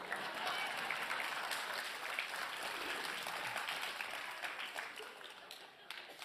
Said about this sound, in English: I'm sorry. Let's all clap our hands for a moment.